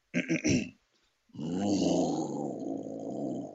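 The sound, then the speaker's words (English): A host of the show Coffee Time with the Lion's Pride imitates a roar with their voice: a few short, rough bursts, a brief pause, then a long, sustained, loud growling roar, with no other talking. “Now I can hear you. Roar again.”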